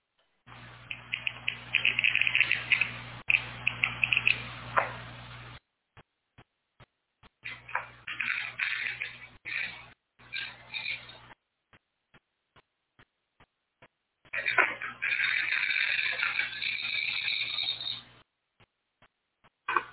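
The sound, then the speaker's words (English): A glass cutter shreds a chunk of glass, recorded with a microphone and a recorder to recreate a sound for comparison: it grinds harshly in three long, gritty bursts of high scraping, separated by brief pauses with scattered small ticks and a steady low hum beneath. “her kitchen with a glass cutter and a microphone and a recorder and a chunk of glass as she shredded it with the glass cutter.”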